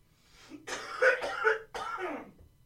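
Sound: person coughing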